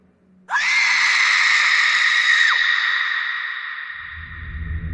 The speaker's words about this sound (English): The first of the arrival crew headed to greet them, and excitement built. But then, we heard a scream.